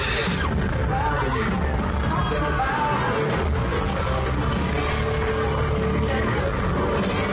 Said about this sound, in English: Like, cause the music's so loud and I can barely hear him singing. That's what I said. So people screaming, but yeah, it's so loud in concerts that you can still hear.